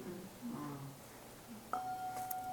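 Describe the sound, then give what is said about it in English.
After some low murmured talk, a bell is struck once and let go rather than held tight, ringing on freely, its clear steady tone sustaining without fading through the end. “The letting go allows it to be the bell.”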